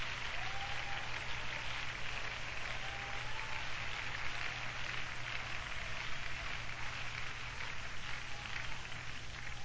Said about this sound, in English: Well, give the Lord a hand clap of praise.